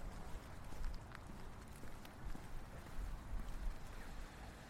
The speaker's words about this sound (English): So here we are on the edge of the street. The traffic is a little louder.